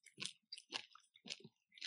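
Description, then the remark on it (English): Moist chewing sounds of a bite of fresh smoked collagen in a steady rhythm, about four wet, crackly bites over a couple of seconds with short pauses between, quiet overall and with no talking. “Chews up just fine.”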